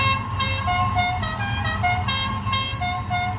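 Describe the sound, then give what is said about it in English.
The horn of an arriving, fully loaded car blares continuously with a bright, multi-toned, almost musical pitch that wavers slightly, loud over a low engine rumble. “He has the most ridiculous horn on his car.”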